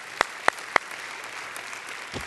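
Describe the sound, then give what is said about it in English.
Hands clapping at a church service as a clap offering to the Lord: three sharp, loud claps in an even rhythm stand out over a steady, hissy wash of background applause, with one softer clap near the end. No one speaks. “If you do, let's put our hands together and give the Lord a clap offering.”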